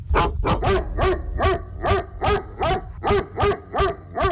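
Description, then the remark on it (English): A dog barks over and over in a steady, rapid rhythm, about a dozen loud barks in a row with no talking. “Later in the news, we'll take you to the eastern region town of Anum and tell you the story behind the prohibition of keeping dogs by residents.”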